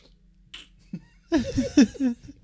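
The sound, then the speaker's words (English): Wet slurping of fresh draft beer sucked off the top of a glass filled right to the top from a growler, several noisy gulping bursts in quick succession after a quiet moment. “Sip it. Just sip it from the top.”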